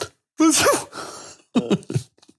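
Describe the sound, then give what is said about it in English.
A voice imitates a sneeze: a loud, rising voiced wind-up breaks into a breathy, hissing burst, followed by a few short, quieter vocal sounds. “That was a good fake sneeze.”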